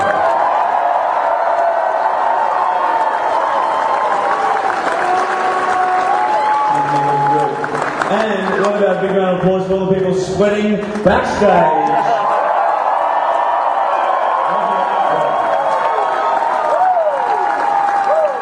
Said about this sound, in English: Give a round of applause for this incredible theatre. Come on.